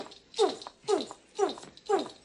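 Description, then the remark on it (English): A dog gives four high, whining yips in a steady rhythm, each call sliding downward in pitch, moderately loud with short quiet gaps between them. “A big dog.”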